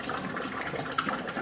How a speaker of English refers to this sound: So we're going to mix up the pulp and the water that was added, just a little bit. The secret ingredient? Cellulose. Oh, it's cold. It is cold.